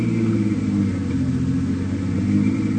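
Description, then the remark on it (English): A small plane's engine turns over and runs at an airport field, a steady droning hum, loud and continuous with a low rumble throughout, no voices. “There it is, the little one with the engine turning over.”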